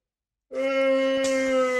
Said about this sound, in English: Excuse me, that was me yawning. That wasn't me giving a review of the match.